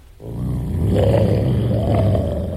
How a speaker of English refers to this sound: There we go. Say hello to my little werewolf friend. That's a good dog.